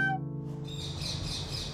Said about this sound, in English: Oh, good, some nice parrot sounds.